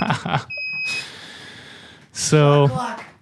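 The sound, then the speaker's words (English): A countdown timer alarm lets out a single high, steady electronic beep lasting about half a second as the timer hits zero, surrounded by breathy exclamations and a speaking voice. “I was going to ask you what it meant when the timer hit zero.”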